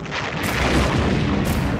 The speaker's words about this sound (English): Gallery orders an attack. Wildcat fighter planes scramble, and destroyers begin dropping depth charges on the diving U-boat.